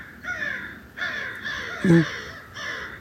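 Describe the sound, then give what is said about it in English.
Several crows caw in a noisy flurry, harsh overlapping calls coming in four or five quick bursts, with no one talking. “Maybe that the crows are riled up because Eagle is there. I can't see that, but I hear the commotion.”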